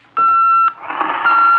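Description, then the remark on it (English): A loud, steady electronic intercom beep, a call from the radio room, sounds for about half a second, then gives way to a crackling, static-filled hiss as a second sustained tone begins near the end. “That's the radio room now.”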